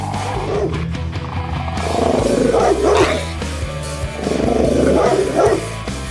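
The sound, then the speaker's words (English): A pack of hounds howls and bays in two long, swelling bursts over a low, steady rumble, loud, with rough barking mixed into the din. “And now, on with the show. Release the hounds.”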